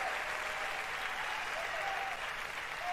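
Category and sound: crowd, audience cheering and applause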